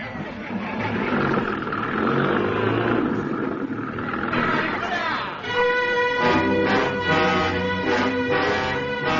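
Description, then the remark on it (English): A car engine roars loudly, first as a rough, noisy rumble, then settling into a strong droning tone that pulses in repeated surges as it revs. “Stop the engine! Stop the engine!”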